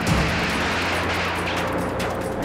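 A bomb explosion heard as a loud, sustained roar of rumbling noise that fills the whole stretch with no clear break, harsh, with no voices. The bomb was dropped by a state police helicopter on the MOVE house in Philadelphia on May 13, 1985.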